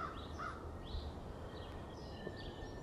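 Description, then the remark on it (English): Faint, scattered bird chirps and calls outdoors at 8 a.m. on a mid-February morning, several short notes spread across a few seconds over a steady, hissy background with no one speaking. “Birds are chirping.”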